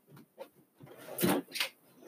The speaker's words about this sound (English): And I'm going to get it out of my drawer while we're doing this.